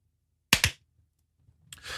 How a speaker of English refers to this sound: All right. Let's clap.